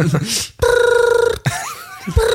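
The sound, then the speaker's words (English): A voice imitates an old-fashioned telephone ringing, a buzzy, trilling tone held in two bursts with a brief pause between, loud. “He's miming it. An old-timey phone.”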